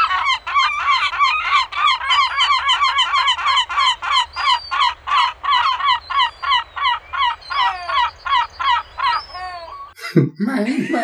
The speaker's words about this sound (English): So for the listeners out there who don't know what a seagull sounds like, I'm going to put the audio in right now.